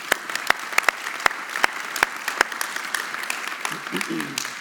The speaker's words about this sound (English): Yeah. You can clap.